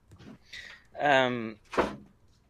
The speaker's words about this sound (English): He said, close the door!